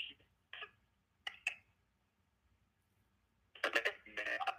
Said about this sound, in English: Man, your phone sound like you under the water crying like a beta male sit man giant motherfucker, bro. Your service fucked up.